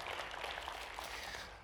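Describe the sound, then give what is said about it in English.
A crowd applauds as a clap offering of praise to God, in a dense, steady patter of many hands clapping together, holding an even level before easing off slightly at the end, with no talking over it. “Come on, can you give a little clap offering of praise to our Lord God right now?”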